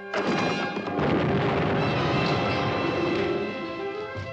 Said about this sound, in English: Holy explosion!